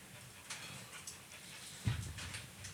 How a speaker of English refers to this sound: I can hear the motherfucking dog. He's over here. Huffing and puffing.